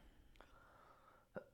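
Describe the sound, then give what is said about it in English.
A single sharp, throaty cough bursts out near the end, fairly loud, after a fainter breathy huff earlier. “You know, pisses me off, my fucking cough.”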